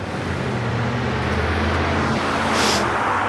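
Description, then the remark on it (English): A car's engine rumbles steadily on a road as it approaches amid continuous traffic noise, with a brief rushing hiss at the end. No one speaks. “God, I thought that was my car coming toward me.”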